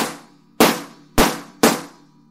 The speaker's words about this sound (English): the cheapest way besides a rim shot was this instrument I have called a shot pad